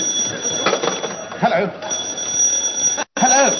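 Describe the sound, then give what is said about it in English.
A front doorbell rings with a steady, high-pitched electric tone that runs through the whole moment, while people talk over it. “Oh, darling, that was the front door.”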